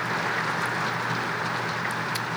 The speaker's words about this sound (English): It's raining a little bit for you guys listening to the dogs on your earphones. Don't mind that. It's fine. It's fine. It's just a little rain noise.